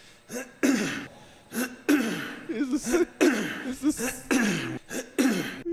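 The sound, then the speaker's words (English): A man giving a DIY speech coughs and clears his throat harshly and repeatedly, about eight bursts in a row with short gaps between, fairly loud with no speech. “But I believe, I don't have the original, but I guess he coughs a lot during this whole thing.”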